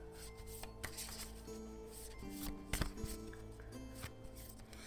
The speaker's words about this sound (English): All right. Well, we're going to go ahead and start with card number 1. Okay. Let me go ahead and shuffle.